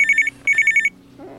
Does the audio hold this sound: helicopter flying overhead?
no